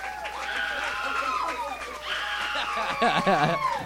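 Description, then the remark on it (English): An audience yells and cheers continuously as a guest is called to the stage, with many overlapping voices whooping in rising and falling pitches, swelling louder toward the end. “They don't yell like that for me.”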